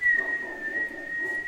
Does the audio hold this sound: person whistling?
yes